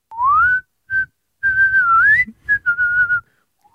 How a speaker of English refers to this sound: And so now I go out of my way to whistle whenever I see her. And I just wanted to say sorry for that, for the whistling. Oh, I want to hear a whistle.